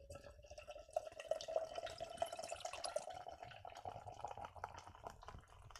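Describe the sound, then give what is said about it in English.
A dark 10% beer pours steadily from a can into a glass, a continuous gurgling stream with light fizzing and splashing throughout, and no voices. “Oh, we got to get it poured. We got to get it poured.”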